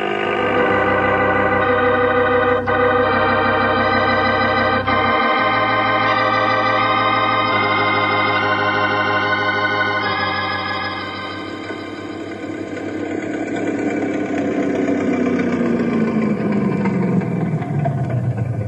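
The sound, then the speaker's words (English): A loud, droning speedboat engine roars with steady harmonic whine, then its pitch slides downward as it races past and pulls away. No one speaks. “but what about that crazy speedboat?”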